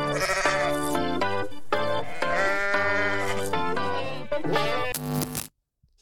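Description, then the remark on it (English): A goat bleating sound effect, played for the 'GOATs of the week' segment on Locked On Canucks: a goat bleats loudly and repeatedly, a series of wavering, nasal cries run together with no other sounds, cutting off abruptly near the end. “Where's the GOAT, man? Bah.”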